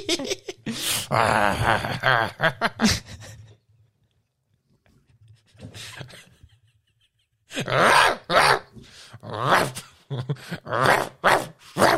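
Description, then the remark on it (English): A dog in a studio growls and grumbles in loud, rough bursts, falls quiet briefly with a short mutter in between, then launches into another stretch of throaty, insistent vocalizing. “Hope you don't take that dog to the vet, do you, mate?”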